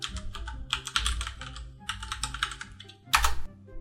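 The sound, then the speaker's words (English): Keyboard typing of a web address: a quick, uneven run of clicking keystrokes in short bursts, finishing with one louder, sharper key clack. No one speaks. “You get to hear me typing in the web address.”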